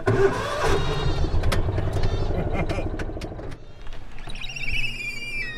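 A car engine turns over and catches, then settles into a steady, low rumbling run, with a thin high-pitched whine rising over it near the end, as the car sets off for a ride down the hill to a cheese shop.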